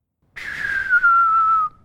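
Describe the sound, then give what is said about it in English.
A person standing about 5 feet back from a telephone whistles one loud, sustained note that glides slightly downward over about a second and a half, with no talking. “Now, whistle.”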